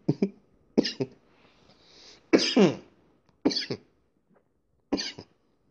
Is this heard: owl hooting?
no